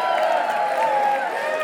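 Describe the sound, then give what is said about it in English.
An audience gives a round of applause for honesty, clapping steadily with cheering voices mixed in, a loud, continuous wash of clapping and crowd noise that holds an even level for under two seconds. “Round of applause for honesty.”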